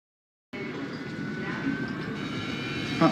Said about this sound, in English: Uh-oh. Of course, there's an airplane out there.